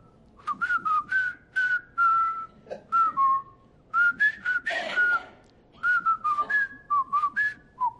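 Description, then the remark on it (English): A person whistles the jaunty march tune from the film The Bridge Over the River Kwai, the pitched notes bouncing in a steady rhythmic phrase with short breaths between, clear and fairly loud with no talking. “We did whistle The Bridge Over the River Kwai.”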